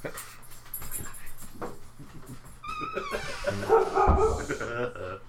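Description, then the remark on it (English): A dog present with the speakers breaks into a short flurry of loud barks and high yips in the second half, following a few seconds of quieter background voices. “We have a dog on the”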